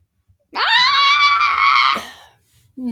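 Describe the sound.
A person lets out a loud, sustained scream imitating a goat, lasting about a second and a half with a wavering, bleating quality, followed by a brief moment of quiet.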